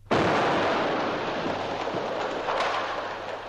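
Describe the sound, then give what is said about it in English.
A sudden heavy blast opens a dense, roaring wall of explosive noise as artillery shells burst in a wood that is a mass of flame, with trees crashing and further shell bursts cracking through the rumbling din before it slowly eases. “The wood is a mass of flame, shells bursting, trees crashing. All is confusion and din.”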